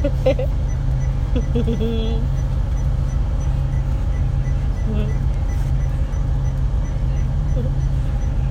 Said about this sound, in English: And now I'm on the bus.